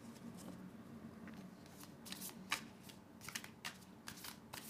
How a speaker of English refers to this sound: And she's curious about my deck. And she's sniffing at me, shuffling it.